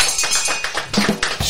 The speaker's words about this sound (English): Ring that bell.